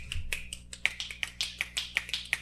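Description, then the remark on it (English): A quick run of about a dozen crisp finger snaps in a steady, slightly uneven rhythm, each a sharp bright click over a low background hum, with no talking. “If I could snap on here without killing your eardrums, I would be snapping.”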